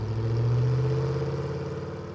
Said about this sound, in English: He's revving it up already. I assumed he was just going to pull up next to me and rev the engine, and why is he coming at me so fast?